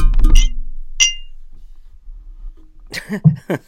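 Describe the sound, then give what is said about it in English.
During a cheers toast, a glass strikes a microphone's pop guard twice, a dull thudding knock followed by a sharper, ringing clink, loud. After a short pause, a voice begins. “for those of you who have wondered what was that, every time I cheers and it sounds like I'm kicking a bucket, it's called a pop guard on a microphone, and it stops the p p pops and the s s s sounds.”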